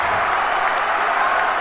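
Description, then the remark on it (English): A loud, dense roar of crowd cheering and applause fills the entire moment, steady, with no individual voices standing out, as fans empty the stands after Williams wins a basketball game against Amherst with a buzzer three-pointer in Williamstown. “Williams has won it. And the crowd empties the stands.”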